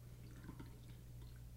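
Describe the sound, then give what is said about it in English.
A quiet pour of coffee into a cup, a soft continuous trickle with faint drips, over a steady low hum and no talking. “I'm just gonna pour mine regularly.”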